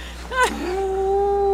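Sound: cat noises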